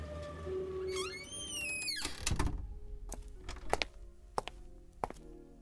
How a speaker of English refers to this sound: Door's open.